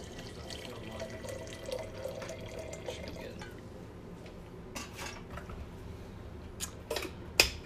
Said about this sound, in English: Refill this. Oh, should we just do that? It might be faster. Okay, let's do that. We're going to get some more water here.